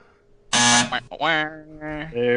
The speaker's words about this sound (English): Hit the buzzer.